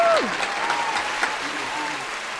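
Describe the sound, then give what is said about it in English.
A crowd applauds steadily for a couple of seconds, a dense wash of clapping with a brief tonal swoop at the start and faint murmuring voices underneath. “Okay, round of applause.”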